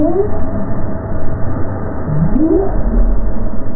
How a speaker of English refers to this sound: This whale was traveling off the Cape in 2015.